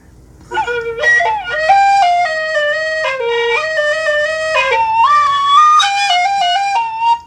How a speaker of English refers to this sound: because I bought some tin whistles today, so now I'm going to play our theme song on the tin whistle.